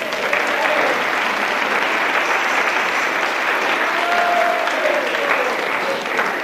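Sustained audience applause, a dense, steady patter of many hands clapping at an even level for several seconds, with a few faint whoops rising briefly through it.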